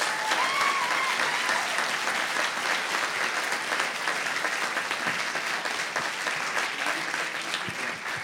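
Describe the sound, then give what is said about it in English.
Sustained applause from a large theater audience at the Kopeck Center Theater during a live show by The Minimalists, a dense, steady wash of clapping that fills the whole stretch at a fairly loud, even level, with faint scattered cheers mixed in. “Ladies and gentlemen, let's give him a round of applause.”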